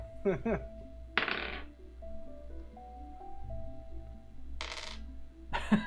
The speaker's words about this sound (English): I hear the small clinking of a D4.